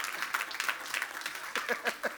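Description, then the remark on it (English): An audience claps in a dense, steady patter of applause, with a few voices calling out over it toward the end. “If you are going to clap, clap.”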